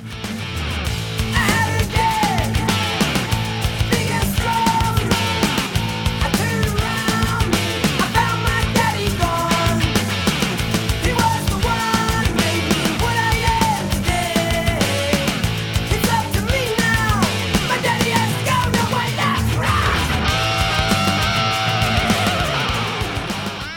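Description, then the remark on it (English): A loud, dense rock track driven by pounding, steady drums, with a strained, shouting male vocal riding over distorted guitars throughout. “I just really love the drums on this one, just that drum and him shouting, because, you know, everything else is kind of taking its time leading you in.”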